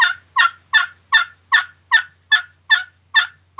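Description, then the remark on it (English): A gobbler yelp played on an old glass turkey call that has not been roughed up: about ten evenly spaced, raspy yelping notes in a steady rhythm, loud, with no talking. “There's your gobbler yelp.”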